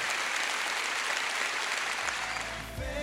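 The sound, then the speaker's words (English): A crowd of people at a Celebration Church service claps together in a dense, sustained burst of applause, steady and loud throughout, with a low hum and a faint musical tone rising near the end. “You've got a hand clap right now.”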